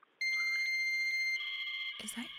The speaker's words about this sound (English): Is that? Are you dialing? Is that your modem?